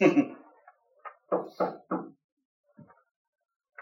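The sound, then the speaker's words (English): Three firm, evenly spaced knocks on a door, clear, after a brief thump at the start, followed by a few faint knocks and quiet shuffling. “Someone's knocking on the door.”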